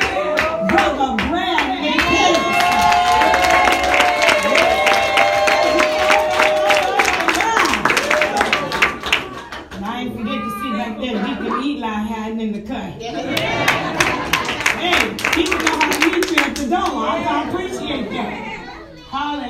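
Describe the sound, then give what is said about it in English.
A crowd bursts into sustained applause, dense rapid clapping mixed with loud cheering and shouting voices, easing slightly midway before swelling again and continuing to the end. “And now give your first hand.”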